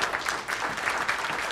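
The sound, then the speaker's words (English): An audience gives itself a round of applause, a dense wash of many hands clapping at once with a bright, crackling texture and no voices standing out. “Come on, give yourselves a round of applause.”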